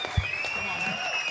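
Brief burst of audience applause, a dense crackling wash of clapping at steady volume, with a thin high whistling tone running underneath throughout.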